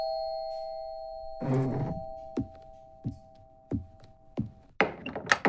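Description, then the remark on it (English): Several sharp knocks on a condo door, evenly spaced about half a second apart, over a steady ringing chime tone, with a rustling clatter before the knocks and a busier burst of sound at the end. “Instead, we find newly retired sanitation engineer Dan Milo knocking on the condo door belonging to Di Stefano, an aging secretary.”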